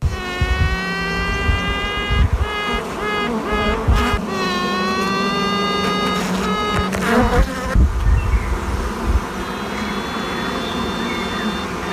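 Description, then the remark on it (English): A queen bee piping: long, reedy, high-pitched toots that rise slightly and repeat several times over the low, constant buzz of a hive, clear with no talking. “here is a queen bee piping.”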